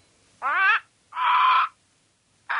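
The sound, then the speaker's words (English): Two loud, harsh bird squawks with a third starting at the end, each a raspy, crow-like call lasting about half a second, separated by short silences, used as a segment sound effect, without any talking. “This here be the social media squawks.”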